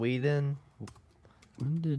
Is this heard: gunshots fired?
no